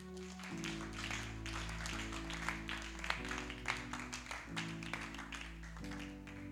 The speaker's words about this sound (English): Hallelujah. You can clap for Jesus.